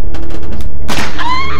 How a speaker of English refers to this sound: Ah, you shot me! It isn't a real bullet. Oh, wait. Yes. Yes, it is. Daddy, I'm bleeding.